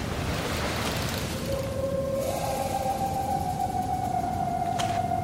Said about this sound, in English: The sandstorm's a lot heavier up here.